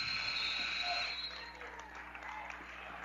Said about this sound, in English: By the time they inbound it, there's going to be a horn sound here in just a moment. And that is going to do it.